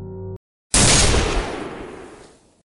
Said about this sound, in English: With a deafening bang, amplified by their cramped surroundings, it shot forth a bursting spray of salt.